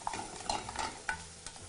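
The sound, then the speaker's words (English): Onions for a risotto sizzle steadily in a pan with a soft crackling hiss, broken by a few sharp scraping clicks as a utensil stirs them. No one speaks. “So now here our onions for our risotto are coming down nicely.”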